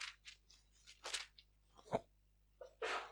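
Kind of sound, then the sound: human body sound, sneeze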